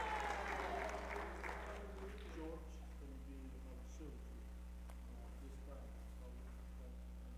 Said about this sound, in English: Come on and give Him a hand clap of praise tonight. Amen. Amen. Thank You, Lord. Thank You, Lord.